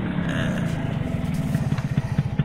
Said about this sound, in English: Got a new moped, Dr. Crow. You like it?